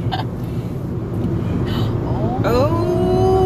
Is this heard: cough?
no